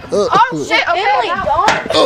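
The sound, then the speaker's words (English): A voice imitates the ping of a shovel smacking a head, with a series of bright, sliding vocal tones and a sharp, clipped burst near the end, loud throughout. “The ping. Of the shovel smacking her head.”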